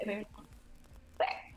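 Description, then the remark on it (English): A short, stifled sneeze bursts out, abrupt and fairly loud, following a brief voiced sound and a moment of near quiet. “Bless you.”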